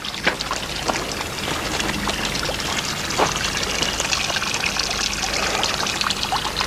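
Steady trickling and babbling of a stream, with continuous bright splashing and gurgling at an even level throughout, fairly loud, with no voices.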